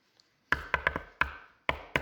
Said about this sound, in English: That's a secret knock, by the way. I think that the disciples had a secret knock, you know, so something like that. So a knock came at the door,